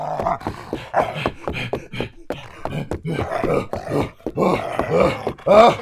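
Loud beastly growling and roaring of a teenage werewolf, a snarl that comes in rapid, rough bursts with groaning tones, continuing almost without pause for several seconds.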